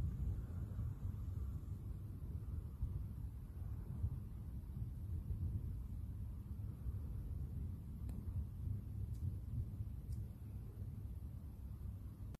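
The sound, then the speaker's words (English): A night-time thunderstorm in Preston rumbles low and steady throughout, a deep continuous roar with a few faint crackles near the end; nobody speaks and the overall level stays fairly quiet. “So that is a video of some of the thunderstorms that happened in Preston a couple of nights ago.”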